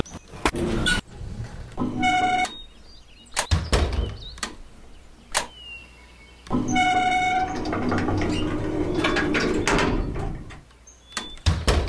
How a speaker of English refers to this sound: Select a sound for when your door closes.